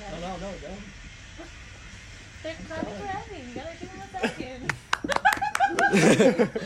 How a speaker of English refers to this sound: They're clapping